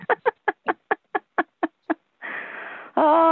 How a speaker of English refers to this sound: A lot of breathing.